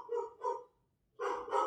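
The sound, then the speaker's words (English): A pet dog barks four times in two quick pairs separated by a short pause; the barks are sharp, mid-pitched and moderately loud, with no talking over them. “Wow, I don't know if you can hear that. My dog is freaking out right now.”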